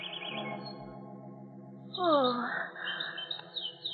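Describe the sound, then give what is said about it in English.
Caged birds chirp and twitter in a steady overlapping chorus after the covers are pulled off their cage, with bright warbling calls swelling midway and a low sustained tone running beneath. No one speaks. “You pulled the covers off the cage. Carl! Oh, Carl, I'm speaking to you. Those birds, I don't like them.”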